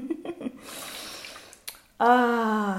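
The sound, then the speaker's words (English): Water sloshes and swishes for about a second as a person shifts and adjusts themselves in a bath, followed by the person starting to speak loudly. “I'm just chilling in water right now. So if you guys hear some water going on, that's literally what's going on.”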